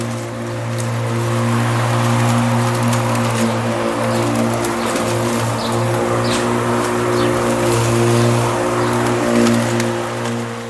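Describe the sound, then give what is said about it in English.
A lawnmower runs outside as a woman mows the lawn, with a steady, low droning engine hum and a hissy buzz above it, holding an even, loud level throughout with no speech. “Even the lawnmower is is interesting.”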